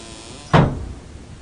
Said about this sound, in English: Swing the door shut when I'm safely down in the passage.